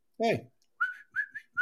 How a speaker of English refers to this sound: Hey. Hey. Whistling in my ear does nothing for the dog. You know we can hear it.